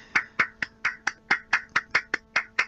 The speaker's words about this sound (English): Are you slapping something against your leg there? Is that... on his own ass. No, that was a round of applause. Oh, okay, sorry, yeah.